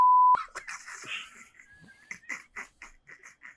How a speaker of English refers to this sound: We can beep it. Nah. I like the beeps. Let's do it.